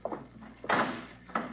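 A heavy metal vault door swings shut with a deep, solid thunk, followed moments later by a second, shorter knock as it settles into place, fairly loud.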